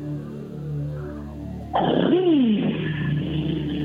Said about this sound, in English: That's a loud engine, dude.